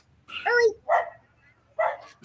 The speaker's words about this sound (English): dogs bark.